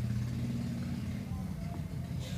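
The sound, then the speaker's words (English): A car engine rumbles steadily on the street outside an open window in a small town of 14,000 people, a low drone that holds throughout with a faint hiss of tyres building near the end. “Oh man, here comes another car.”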